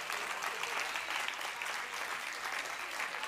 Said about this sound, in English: Someone clap your hands to the God who reigns supreme.